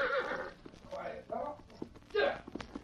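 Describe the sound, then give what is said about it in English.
A horse at a corral whinnies in several loud, quavering bursts, while sharp hoof clip-clops sound in between, scattered and uneven as the animal shifts about. “Now him go to corral for horse.”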